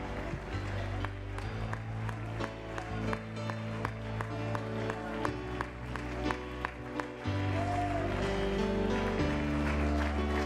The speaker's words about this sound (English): time and give them a hand clap of praise.